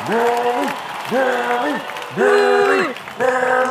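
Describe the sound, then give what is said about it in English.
A crowd in a stadium cheers loudly after the winner of a final match is announced, with four rhythmic, chant-like vocal bursts rising over a steady wash of clapping and crowd noise. “The crowd goes wild, and you hear it cheering again.”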